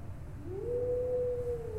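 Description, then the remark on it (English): A lone wolf howl rises smoothly in pitch and then holds a long, steady note over a low, rumbling background hum, with no voices present. “Again, you hear the sound of the wolves.”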